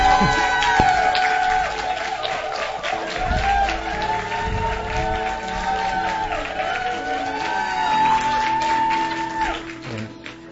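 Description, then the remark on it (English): A church audience gives a warm round of applause to welcome a speaker who will preach, steady clapping mixed with cheers and whoops that holds at a strong level for about ten seconds before tapering off. “So let's prepare our hearts and give a warm round of applause to our brother”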